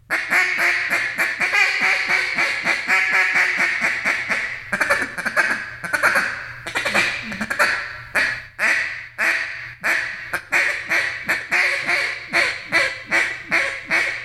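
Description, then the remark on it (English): A duck call is blown in a steady run of short, choppy quacks, then a stuttering hiccup call of clipped notes on the bottom end, loud, with no talking. “That sounds good. I like that hiccup call on the bottom end.”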